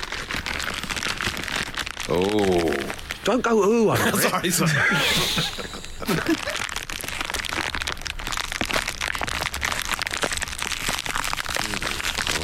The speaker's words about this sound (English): So I've gone out there and I've had a little fiddle around with the workman's tools, and I've come back in with this. It's a plastic bag of screws and those little wooden pegs you get with flat pack furniture.